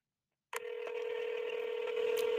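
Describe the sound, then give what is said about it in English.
After half a second of silence, a telephone dialing tone begins as a phone number is dialed to call someone, holding steady and fairly loud to the end, with a few faint clicks from the keypad. No one speaks. “So let's go ahead and dial this one in here.”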